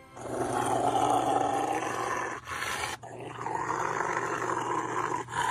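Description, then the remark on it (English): A Rottweiler growls loudly and continuously, a deep rough snarl that runs for several seconds with only two brief breaks, with no voices. “What are they doing to that dog?”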